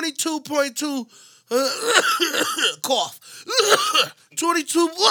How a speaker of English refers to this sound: That's how I cough.